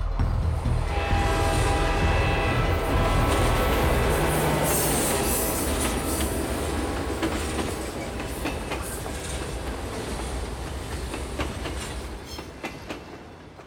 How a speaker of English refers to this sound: The train was coming closer. I could hear its bell, its cry, its whistle crying.